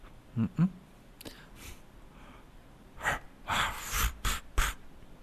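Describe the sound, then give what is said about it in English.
A person imitates a wild boar with a series of breathy snorts and grunts: two short low bursts, a pause, then a cluster of louder, rougher nasal snorts. “A wild boar. Is that a That's it.”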